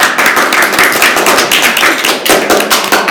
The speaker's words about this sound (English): And your grades depend on that applause, so.